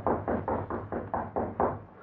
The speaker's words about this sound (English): Then he replaced it carefully on the wall, just as a light knock sounded at his door.